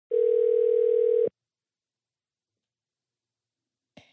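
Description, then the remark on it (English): A phone's ringback tone while calling a friend: one steady, clear electronic burst lasting about a second, followed by a long silence, then a short click-like sound at the very end. “He's like, who the fuck calls people nowadays?”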